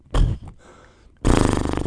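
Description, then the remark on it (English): Someone imitates a horse, doing the horse noise they do in Eureka: a short, loud snorting burst, a brief quieter pause, then a long, rough, fluttering whinny with rapid pulsing that runs to the end. “All right, make the horse noise you do in Eureka.”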